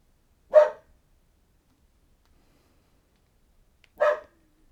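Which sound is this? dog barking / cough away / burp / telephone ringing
dog barking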